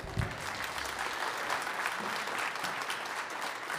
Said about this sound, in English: I'm just sensing in the room that you wanted to clap a little longer than that, didn't you?